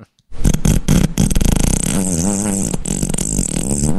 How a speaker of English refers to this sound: All right. We got new farts, guys. It's too long.